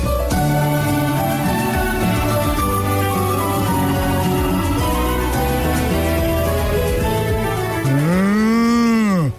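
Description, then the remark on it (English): A cow on a farm, about to give birth, lets out a loud, drawn-out moo that swells and falls at the very end, preceded by a steady droning, tonal background with no one talking. “Looks like this cow's about to give birth, James Herriot, the man from Our Creatures Great and Small.”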